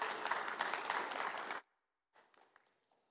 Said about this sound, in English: And so I'm going to ask them just to come one at a time and to share. Just give them a big round of applause whenever they step up here, because it's a lot of hard work serving as an elder, especially working with me.